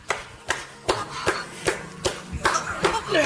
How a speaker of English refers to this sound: Now, I think she's speaking in a different language, yeah, but yeah, you're hearing slapping.